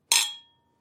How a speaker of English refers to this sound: Should we cheers to our first episode? Yes. So cheers to episode one.